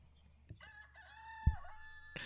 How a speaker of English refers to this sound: Saved by the fucking cock-a-doodle-doo, boo.